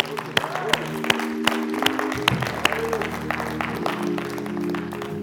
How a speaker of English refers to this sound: Everybody stand this morning. Give God a hand and clap.